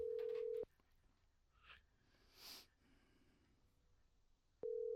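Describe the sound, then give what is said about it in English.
A Facebook Messenger call's ringing tone: a steady electronic buzz sounds briefly, then a long near-silent pause before the next ring begins. Loud, with no one speaking. “So I'm going to call them real quick and get them both on the phone.”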